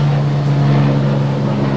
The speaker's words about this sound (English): I'll just wait for the helicopter. Is that your sound effects, Rog? Is it? Yeah, it's a good sound effect, but.